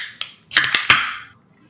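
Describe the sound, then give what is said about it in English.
A can of stout beer is cracked open: a small click, then a sharp metallic snap with a burst of bright fizzing hiss that quickly fades into quiet. No one speaks. “I also wouldn't say cosmic stout, but let's give this a crack and a pour, shall we?”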